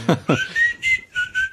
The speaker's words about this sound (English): Well, he's walking off whistling quietly to himself.